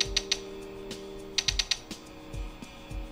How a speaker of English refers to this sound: Twisting its widdershins won't actually make it change shape, but it does make a distinctive clicking sound.